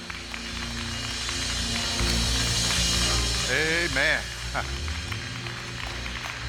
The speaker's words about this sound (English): Father, we bless you today. All over the building, let's give God a hand clap of praise. Say, amen.